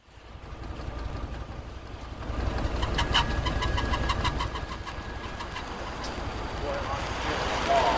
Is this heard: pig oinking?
no